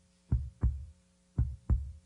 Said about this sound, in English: I can still hear your heartbeat, thus saith the Lord.